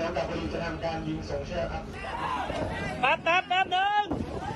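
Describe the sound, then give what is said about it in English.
Harsh wind roars steadily over the Navy corvette Sukhothai, tilted at a nearly 60-degree angle to the water, while several sailors shout loudly in bursts, their raised voices rising and falling over the blustery noise. “Videos and footage shared on social media showed the Sukhothai, one of just seven Navy corvettes, at a nearly 60-degree angle to the water, the sound of harsh winds and shouting sailors in the background.”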